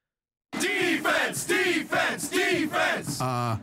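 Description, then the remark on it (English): A football crowd chants in European style, loud rhythmic shouted phrases repeating about five times in a steady beat, ending on a held, sung note. “Isn't it time you embrace the wit and vitality of European style chanting only at the next LS Bender's home game?”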